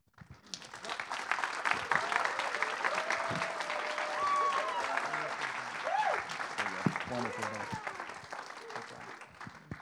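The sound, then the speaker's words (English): A crowd applauds the seniors steadily for about ten seconds, a dense wash of clapping with scattered voices and a few cheers mixed in, staying loud throughout. “And just a big round of applause and a big thank you to all the seniors.”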